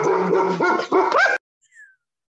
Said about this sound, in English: Got some dogs. Oh, man. So sorry.